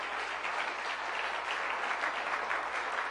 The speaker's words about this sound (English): One more time, give them a big hand clap.